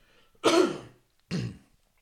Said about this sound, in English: I do apologize for clearing my throat so much, man.